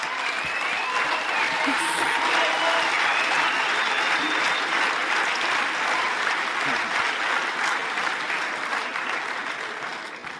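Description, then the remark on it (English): Sustained applause from an audience, dense and steady for about ten seconds before easing off slightly at the end, with faint voices mixed into the clapping. “Can we give a quick round of applause for the two of them?”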